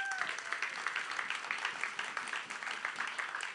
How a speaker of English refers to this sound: Come on, y'all give the Lord a hand clap.